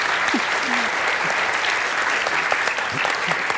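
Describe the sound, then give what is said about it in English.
An audience applauds steadily as panellist Lisa Forrest, Olympian, broadcaster and author, is introduced: a dense wash of many hands clapping at once, sustained and fairly loud throughout, with faint vocal murmurs mixed underneath. “Yes, clap, Lisa.”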